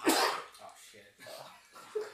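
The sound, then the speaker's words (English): A single sharp, loud sneeze bursts out right at the start, then fades into quieter, muffled voices talking. “Oh, shit. Bless you.”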